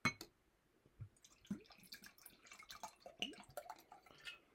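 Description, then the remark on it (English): Wine glugs and splashes into a glass, an uneven run of gurgles and bright liquid trickles with faint glassy ringing, lasting a few seconds with no talking. “All right, we got some wine here. I don't know what I grabbed, but I need a drink during this review here.”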